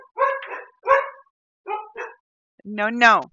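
A dog barks in a few sharp, uneven bursts, then lets out a longer, drawn-out yelp that rises and falls in pitch.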